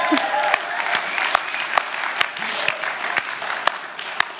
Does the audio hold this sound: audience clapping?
yes